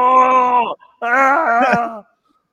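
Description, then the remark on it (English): Two long, loud howls in a row, each a rich, moaning wail with a steady low pitch. The second is slightly longer and wavers before cutting off. No one talks. “There's that fucking howl again that they say that he has.”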